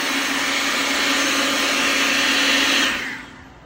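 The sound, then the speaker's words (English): A leaf blower roars with a steady, high-pitched motorized whoosh for about three seconds, then quickly winds down and fades out. “My daughter has Bluey, daddy has a leaf blower.”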